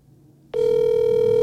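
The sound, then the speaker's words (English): A steady electronic phone tone switches on abruptly after a brief quiet moment and holds at a constant pitch, loud, an outgoing phone call ringing on the line. “We don't typically call each other on the phone, so this might just be a little.”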